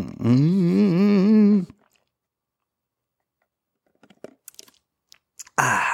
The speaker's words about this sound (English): Oh, yeah. Yeah, sure, I could edit out that sip or two, but then you'd miss out on the authenticity of this podcast. That's what makes it real life, is you get to see every sip. That's right, I could cut away right here, but I'm not gonna.